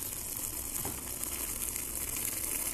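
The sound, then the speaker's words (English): Steady bubbling of liquid in a cup with ice, made on purpose as a sound, a continuous fizzy, crackling gurgle that holds at an even level for a few seconds with no voices. “I don't know if my fucking ice gave it away that I used my cup for that sound”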